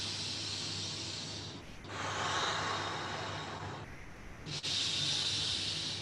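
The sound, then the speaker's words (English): Loud breathing in a fast rhythmic breathing exercise (bastrika), with steady alternating inhales and exhales, each a rushing, airy whoosh lasting a second or two, repeating in a quick, even rhythm without any talking. “faster rhythmic breathing. So you're breathing in a rhythm, and we usually use a beat, a rhythm.”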